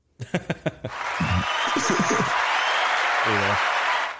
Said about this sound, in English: I'm playing a clapping effect.